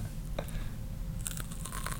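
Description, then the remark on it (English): Someone takes a first bite of a hard, crunchy macaron cookie up close: one crisp snap, then a quick run of crackly crunches and chewing, fairly quiet against a low background hum. “Let me get close so you guys can hear the crunch and see how hard this cookie is.”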